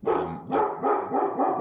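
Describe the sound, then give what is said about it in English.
A dog barks repeatedly, about four loud, rough barks in quick succession with brief gaps between them, with no talking over it. “Do you want me to have a word with your dog?”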